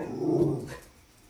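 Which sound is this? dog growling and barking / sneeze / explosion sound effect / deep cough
dog growling and barking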